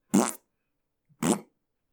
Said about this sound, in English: The first game I remember playing is Microsoft Fine Artist with Nick Z, and I loved it because it was a souped-up Microsoft Paint with all of these fun little animations and this zany music and these fun fart sound effects.